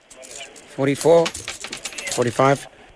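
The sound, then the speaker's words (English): Metallic coins, collected over 17 years, clink and drop in quick, irregular taps as they are counted into bags, with a voice speaking briefly twice over the jingling. “You have all the coins? Yes, got lots.”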